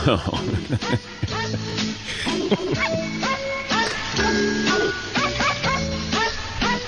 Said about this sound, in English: If that doesn't make you smile, yeah, I don't know what will. It does. Dogs barking happy birthday.